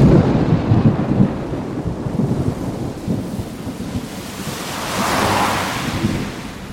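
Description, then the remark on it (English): Steady, heavy rain hisses throughout on Halloween while deep thunder rumbles roll underneath, with a broad swell of storm noise building near the end. No voices are heard. “Halloween's getting rained out.”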